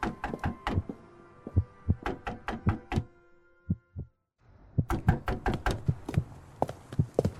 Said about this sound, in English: Wake Duncan with thy knocking, would thou couldst.